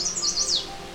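A male chestnut-sided warbler, on territory for only a few days, sings a quick run of high, sweet whistled notes that slur downward at the end, clear over a soft outdoor hum, in late May along the Huron Fringe on the eastern shore of Lake Huron.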